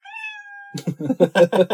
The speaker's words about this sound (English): There's a kitten.